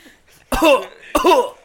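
Two harsh, loud coughs right up against the microphone, a brief pause between them, each burst rough and throaty like the middle of a coughing fit.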